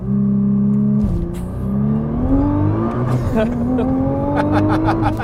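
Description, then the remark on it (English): The VR38 engine of a 441 kW Nissan GT-R Nismo accelerates hard and loud, its roar climbing steadily in pitch, briefly dropping at two quick gear changes before surging upward again. “today we're in the 441 kilowatt Nismo GTR”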